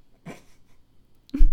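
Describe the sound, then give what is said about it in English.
Two short dog noises, a soft huffing burst followed after a pause by a louder one, with quiet in between and no talking. “And, oh, is that my dog?”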